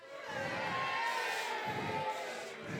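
An audience cheers and shouts together in a loud, sustained burst of mixed voices, some high-pitched like children, holding steady for a few seconds.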